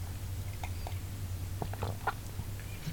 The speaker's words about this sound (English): I'll take a sip of my nice coffee now.